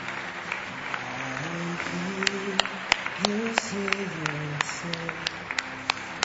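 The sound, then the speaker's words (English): Scattered claps from an audience ring out irregularly over a sustained, low musical tone, a loose smattering of applause rather than a full ovation, with murmuring voices in the background, as people applaud those coming forward to pray and make a decision. “call you publicly in front of a group of men and women who love you and will applaud for the decision you're making.”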